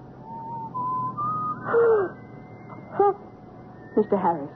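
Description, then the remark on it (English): A thin, steady whistle holds a few pure notes that step upward in pitch, followed by short bursts of voice sounds. “Were you whistling just now?”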